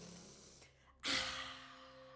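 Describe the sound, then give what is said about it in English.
During a guided breathing exercise, a quiet, airy breath gives way to a loud, forceful sniff of air drawn in through the nose, a sustained hiss lasting about a second over a faint steady hum. “Now as you breathe in through the nose, return the breath with breathe out those flames of the Agni fire, creating a circle around you, a circle of protection in through the nose.”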